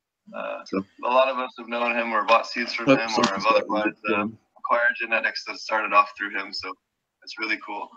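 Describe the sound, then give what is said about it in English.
Speech plays back with a doubled, echoing quality, the same audio playing on a computer and a phone at the same time slightly out of sync, giving a smeared, looping effect across the talking. “Someone's got a loop going.”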